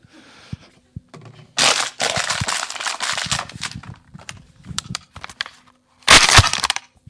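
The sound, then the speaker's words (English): A live foley demonstration imitating Kalashnikov fire with a system devised for a movie that had no Kalashnikov: loud bursts of dense, rapid crackling snaps, a long rattling volley with short pauses, then one final sharp burst after a brief quiet. “And the bad joke for the night, I show you Kalashnikov.”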